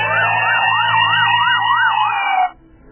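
A loud police siren wails in quick, even rises and falls, about five cycles over a low engine rumble, then cuts off abruptly, leaving faint background noise.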